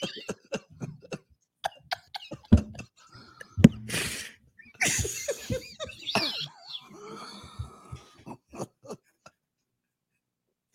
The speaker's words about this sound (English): He had the cough earlier. I know he had the cough.